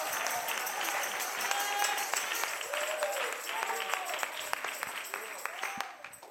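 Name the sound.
audience clapping hands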